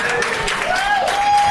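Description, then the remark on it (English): An audience claps in a steady, dense burst of applause lasting a second or two, with a thin tonal voice or whoop rising over the crackling hand noise. “Listen to all those inner children clapping.”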